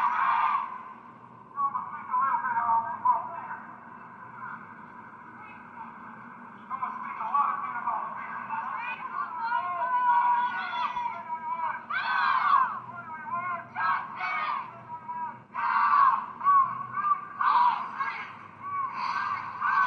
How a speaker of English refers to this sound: Hundreds protest in Grand Rapids in response to fatal police shooting.